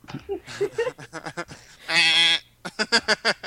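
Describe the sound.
Several people imitate goats, trading wavering bleats: choppy nasal cries, one long quavering bleat in the middle, then a quick run of short stuttering bleats, all fairly loud.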